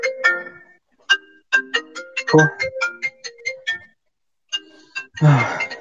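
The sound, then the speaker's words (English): A mobile phone rings with a bright melodic ringtone, a string of quick chiming notes that pauses briefly and starts again, with a couple of short noisy bumps mixed in. “So I don't know whose phone is that.”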